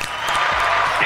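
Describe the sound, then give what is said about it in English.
Steady applause from many hands, a dense, even patter of claps sustained at a fairly loud level throughout, with no distinct individual claps standing out. “We have a hand claps in here.”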